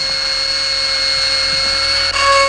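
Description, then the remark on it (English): A dental drill whines steadily at a high pitch, loud, drilling into a healthy tooth in a clip from the film Marathon Man, holding one continuous tone for a couple of seconds before briefly dipping and surging again near the end. No voices. “So, I'll just drill into a healthy tooth until I reach pulp.”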